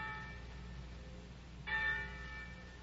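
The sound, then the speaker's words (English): Church bells clang softly, their overlapping tones ringing on and humming, with a fresh, brighter strike sounding partway through. No voices are heard. “But every day you read the papers and heard the gossip of the village, and every day the winds carried you the clangoring of the church bells, telling the news of some great victory.”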